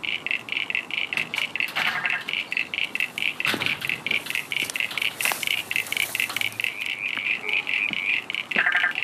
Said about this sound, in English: I think you've got a common eastern froglet, Crinia signifera, there, doing that consistent creaky, creaky, creaky, creaky. And that other one that's a more intermittent call with three pulses, a spotted marsh frog, Limnodynastes tasmaniensis.